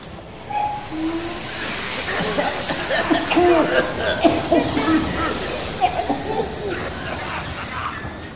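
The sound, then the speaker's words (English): An underground train pulls into a station platform, a steady rumble of wheels and carriages with hissing brakes and squealing metallic tones rising over the roar. “The service will arrive in approximately 1 minute. Please stand back from the platform edge.”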